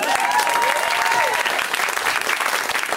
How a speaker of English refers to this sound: they're even just like, look, I'm doing everything I can to make my body super noisy to make these comics feel great. Like, I'm gonna clap my hands, but I'm also gonna stamp my feet.